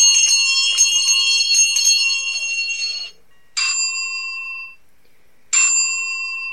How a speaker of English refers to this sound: She had bells rigged all throughout the house.